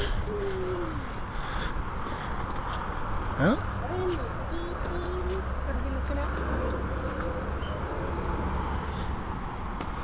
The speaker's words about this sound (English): Huh? Thought I heard a bird, but I'm not sure if it was outside or inside.